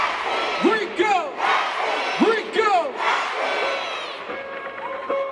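A dense crowd roars and screams continuously, with rising and falling shouted whoops cutting through the din in waves, loud and sustained throughout, briefly settling into steady sustained tones near the end.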